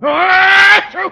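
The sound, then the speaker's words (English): A loud, theatrical sneeze: a long, steady, high-pitched voiced 'ahh' lasting most of a second, then a brief noisy burst and a short voiced tail. “Valley high and gesundheit.”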